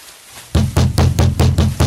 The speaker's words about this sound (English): Who the heck would be banging and clanging on a man's barn door at 8:30 in the p.m.?